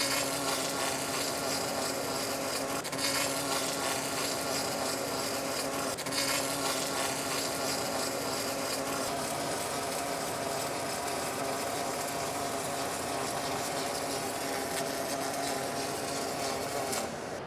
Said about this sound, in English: going to make a weld for us.